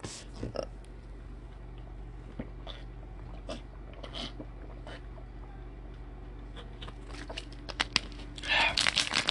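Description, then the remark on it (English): Crinkly crackling from a plastic water bottle being crunched on a microphone, scattered snaps at first and then a louder, dense burst of crumpling near the end, with no talking. “It's gonna come back to me crunching the water bottle on your guys' mic, so lower your volume.”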